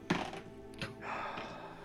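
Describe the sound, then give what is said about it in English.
Dice rolled for a constitution saving throw clatter onto a table in a few sharp, hard knocks: a loud thunk at the start, then softer taps and a brief rattle. No one speaks. “Make a constitution saving throw.”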